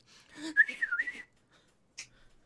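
A person whistles a short, warbling melodic phrase in Thieves' Cant with quick pitch bends, clear, followed by a brief breathy sound and then near silence.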